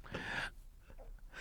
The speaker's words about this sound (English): Thank you for breathing into the microphone again. Shit, sorry.